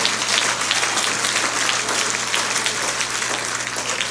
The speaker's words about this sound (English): When the voice of the Lord speaks, everything changes. Clap your hands if you believe that right now.